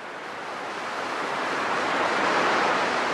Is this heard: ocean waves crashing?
yes